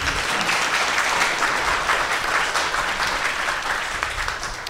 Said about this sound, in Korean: 일단 이 모든 것을 가능하게 해주신 사이언스북스 그리고 내셔널 지오그래픽 그리고 칼세이건 재단께 감사의 말씀 드리고요. 박수 좀 주세요.